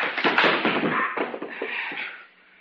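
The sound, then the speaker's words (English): A loud burst of scuffling with several quick thuds and blows in a ragged rhythm as a man is punched and knocked out, tapering off into quiet as the struggle ends. “You knocked him out.”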